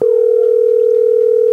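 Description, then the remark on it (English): A steady, loud telephone dial tone hums continuously at one pitch, unbroken, with no voices over it, as a phone call is being placed before it connects. “So let's get Layla on the phone.”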